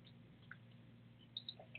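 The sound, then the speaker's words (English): Quiet sipping of water: a few small wet clicks and soft slurps spread over a couple of seconds against a low hum, with no talking. “I just need to get a little bit of water.”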